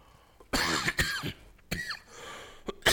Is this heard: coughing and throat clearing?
yes